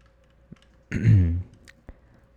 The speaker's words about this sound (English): I took a sip of water. It's not water. It's Coke.